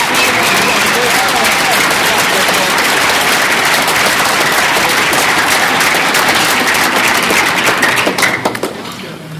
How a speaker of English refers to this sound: So let's give her another round of applause.